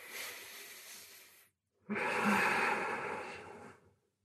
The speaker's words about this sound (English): And there's the sound of all of us breathing together.